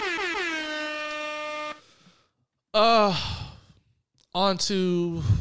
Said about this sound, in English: So once again, air horns.